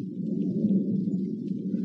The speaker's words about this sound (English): The air seems charged with thunder, and I hear it in the distance.